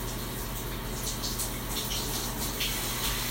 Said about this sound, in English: I'm in my shower right now. I don't know if you can hear this at all, but we're going with it anyway.